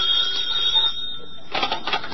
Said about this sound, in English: Your telephone's ringing.